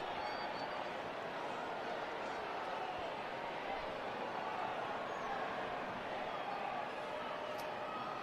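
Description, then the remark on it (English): A large stadium crowd at a soccer match keeps up a steady, dense roar of booing aimed at player Michael over early time wasting, with a few thin, high whistles cutting through now and then. The jeering stays loud and constant throughout. “Crowd starting to boo, a few whistles.”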